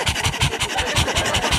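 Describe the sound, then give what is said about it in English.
A person imitates a Boston Terrier's panting, quick breathy huffs in a steady rapid rhythm, fairly loud, with no other sounds around it. “They're always panting like they have a secret they can't tell you.”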